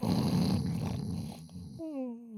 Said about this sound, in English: Speaking of sleepers, go ahead and cue the snores.